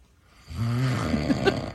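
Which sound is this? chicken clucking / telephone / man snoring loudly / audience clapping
man snoring loudly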